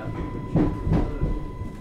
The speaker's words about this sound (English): We're just leaving Brading. Passing the other train.